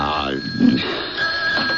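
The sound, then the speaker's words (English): A telephone rings with a steady, high electronic tone that carries through the whole moment, while a voice murmurs faintly underneath. “I thought you took the phone off the hook.”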